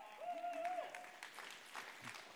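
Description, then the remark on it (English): A church audience claps in a steady, dense wash of applause for a couple of seconds to welcome a speaker to the stage, with a brief whistle-like tone rising out of it near the start. “So why don't you give him a round of applause?”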